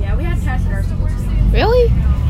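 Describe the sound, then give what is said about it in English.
A loud bus rumbles with a deep, steady engine drone throughout, while people's voices rise and fall over the noise. “A very loud bus.”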